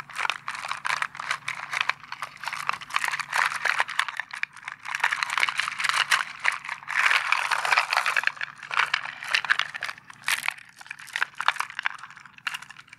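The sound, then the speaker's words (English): Pearls rattle and clatter inside a cardboard box in a dense, continuous stream of small crisp clicks, swelling and easing in uneven bursts as the box is shaken for ASMR. No one speaks. “And inside this box, I actually have some pearls.”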